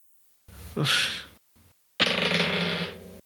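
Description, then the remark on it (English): Dice rolled for initiative clatter and rattle across a hard surface in two loud, bright bursts, the first about a second long and the second longer, separated by a short pause and a faint tick. “Everybody roll initiative.”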